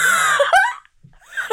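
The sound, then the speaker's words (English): A man imitates screaming: a loud, strained vocal cry lasting under a second, a brief silence, then a second shorter cry. “Imagine a screaming man.”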